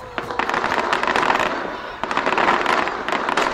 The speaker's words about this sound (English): Look at all those fireworks